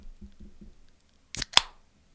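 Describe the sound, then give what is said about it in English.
A can of Bronx Brewery Smile My Guy Happy Hoppy IPA is cracked open: a few soft handling taps, then a sharp snap of the tab followed by a loud pop and a brief fizzing hiss that fades quickly. No one speaks. “I mean, that is a solid, solid crack. I felt that.”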